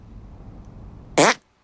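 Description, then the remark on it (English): A single short, loud video game fart sound effect bursts out near the end, a brassy buzzing blast lasting about a quarter second after a stretch of quiet low rumble, then cutting off abruptly. “Make your fart detonate behind me.”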